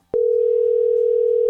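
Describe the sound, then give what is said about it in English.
After a brief click, the ringing tone of an outgoing phone call hums steadily at a single low pitch, loud and unbroken to the end, with no voices over it. “Will this girl pick it up?”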